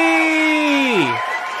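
A sustained cheering whoop holds steady, then slides down in pitch, over a continuous wash of crowd noise that stays loud throughout, as an audience claps and cheers for the show My Fellow Americans in Myrtle Beach, South Carolina, on 19 June 2019.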